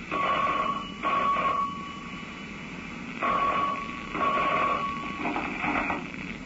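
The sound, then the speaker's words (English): A telephone rings in two double bursts, a pair of short trilling rings, a pause, then another pair, fairly clear over a steady background hiss with no one speaking. “Till a phone call brought him out of the rose-colored clouds and back to reality.”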